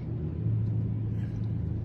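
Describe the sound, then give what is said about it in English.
A regular street motorcycle engine behind the speakers drones steadily, a low, continuous rumble with a faint hum that holds an even level for the whole stretch, with no voices over it. “All right, do we have motorcycles behind us? Yeah, it's a regular street bike.”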